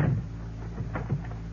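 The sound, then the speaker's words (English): A door is pushed shut, followed by a few short clicks and knocks of its lock being worked, with no voices. “You'll excuse me if I lock the door.”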